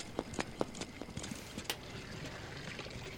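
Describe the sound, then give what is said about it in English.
A quick run of sharp, hollow canned stock footstep sound effects, evenly spaced and a little artificial-sounding, tapping along for a second and a half before thinning out over a soft, steady background hiss. “Those footsteps sound a little weird.”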